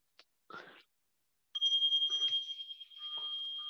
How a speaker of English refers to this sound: We always transition things in Zen with bells. So I brought a bell and it just feels like, okay, now we can actually move on to the next thing.